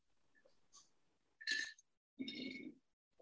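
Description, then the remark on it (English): Glasses clink together in a toast, two bright ringing chimes less than a second apart, fairly loud, with no one speaking over them. “If you are listening, if you are watching with us, please do cheers to the life of a very, very beautiful soul.”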